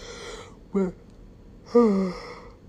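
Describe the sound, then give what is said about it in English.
A breathy yawn: a short voiced catch, then a longer drawn-out exhale that slides downward in pitch, with no talking around it. “I really did not want to yawn.”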